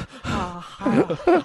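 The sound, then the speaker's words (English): A voice mimics heavy breathing, three breathy, voiced gasps with groaning, moan-like pitch swoops, fairly loud and alone with no talking. “Don't worry, I'll get out of this with some sweet, heavy breathing.”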